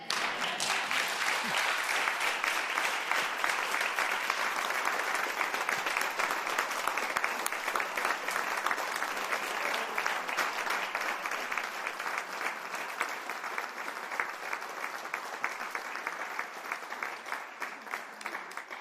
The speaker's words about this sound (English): It's really interesting when you all stand and clap for sermons. I both feel so blessed by it and also like, wow, that's a middle kind of culture, isn't it? Thank you for that. Thank you for it.